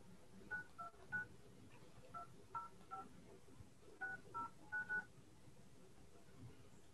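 A run of about ten short telephone keypad tones as someone dials in to a meeting's phone audio, in quick irregular bursts with brief pauses, clear over a faint low background hum and no talking.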